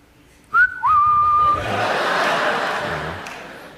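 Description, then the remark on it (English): A sharp, loud whistle from someone in a crowd, two quick rising notes into a held tone, followed by a swell of audience laughter and murmuring. “so it's like, I know, what was the whistle area?”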